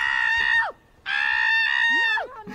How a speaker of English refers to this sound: That scream will haunt my dreams.